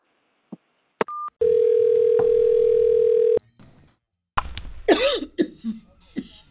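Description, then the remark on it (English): A few clicks and a steady telephone dial tone give way to a burst of harsh coughing and sputtering from a person on a phone call who was choking while laughing, struggling to clear their throat. “You sound like you coughing. I was choking.”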